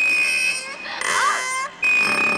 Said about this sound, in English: Now, this one just says creaky sound.